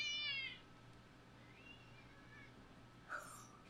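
A male cat gives a short, high meow, then after a quiet pause lets out a second brief, fainter mew near the end, with low background hum throughout and no talking.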